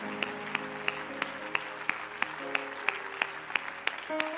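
An audience claps together in praise to the Lord, in a steady, even rhythm, roughly three sharp claps per second, over sustained musical notes humming underneath; no one speaks.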